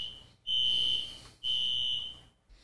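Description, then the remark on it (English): A fire alarm sounds in two long, piercing electronic beeps separated by a brief gap, shrill and steady, with no voices over it. “Jeez, fire alarm's gone off yet again, friends.”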